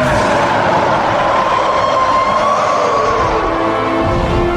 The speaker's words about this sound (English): I mean, yeah, it's pretty epic. I just like the like crazy echoey scream. Like, I don't know if that's part of Helena Bonham Carter's voice in there too, but you know, that's actually the first time I've really noticed that that pitch to it